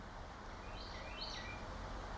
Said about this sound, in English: Hear the birds? I do.